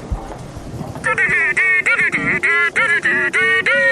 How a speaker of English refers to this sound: It's got three ringtones, that's the name for the ring. There's this one, right? Hang on.